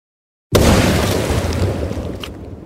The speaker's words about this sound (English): With the explosives prepped, he lit the fuse, and we retreated to the relative safety to witness the festivities. How long you cut that fuse for? Tim said, oh, about any time now. And with that, it detonated with a large boom.